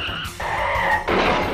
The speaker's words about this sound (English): Yeah, I'm stopping the car so we can ask.